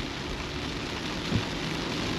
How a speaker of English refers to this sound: But the rain is just relentless.